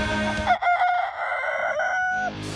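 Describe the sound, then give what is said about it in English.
A single loud rooster crow rings out, a long strained cock-a-doodle-doo with a rising start and drawn-out wavering finish, heard on its own without talk. “Cue the rooster.”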